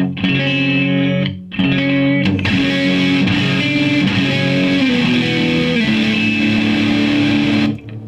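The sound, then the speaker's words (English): Electric guitar played through a Sunset distortion pedal at a moderate, crunchy level-two distortion, strumming sustained chords that ring out, with two brief pauses early on before a longer held passage. Loud and without any talking. “That's obviously, if you know, for a level two distortion where you're not trying to blow people's faces off, but you're definitely trying to jump up and you're doing some more like articulate stuff, you gotta have that.”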